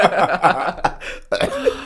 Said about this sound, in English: You cough.